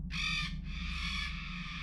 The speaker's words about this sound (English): And there's still a big bird on your porch! You don't think the big bird knows you're scared, do you?